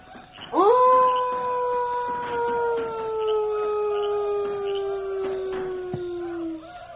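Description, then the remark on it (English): A person imitates a wolf howl as a signal call to a Cheyenne chief: one long, loud, steady wail that slowly glides downward in pitch for about six seconds before cutting off. “Me try wolf call.”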